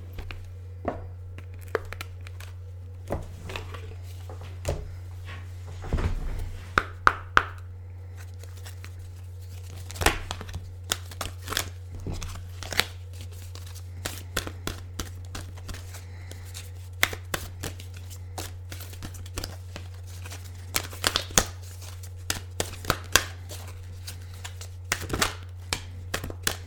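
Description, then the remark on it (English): A deck of oracle cards being shuffled, with a long run of quick papery flicks and soft snaps, irregular and ongoing, over a steady low hum with no one speaking. “So let me open this up, give it a shuffle, and see what comes up for us all.”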